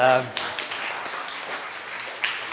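An audience claps steadily for a couple of seconds for a participant who answered a question, a dense, crackly wash of many hands at moderate loudness, right after a brief vocal sound at the very start.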